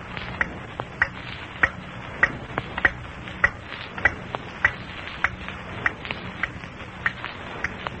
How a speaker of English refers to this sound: I wish I could stop listening in the dark, waiting for that clock to strike 9. I think I'll be glad to hear that first stroke.